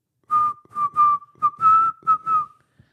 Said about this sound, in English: I heard somebody whistling.